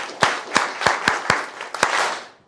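An audience gives a camp clap as a woman comes up to share her testimony: a rhythmic, patterned clap of about six sharp unified beats over a wash of scattered applause and crowd noise that fades out at the end.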